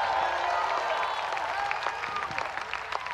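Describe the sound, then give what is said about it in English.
A large crowd claps steadily for Jesus in a dense, continuous wash of applause, with cheering voices and shouts of praise mixed through it, loud throughout. “Give Jesus another clap and a shout of praise.”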